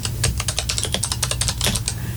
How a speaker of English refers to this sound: Yeah, my typing's not that great.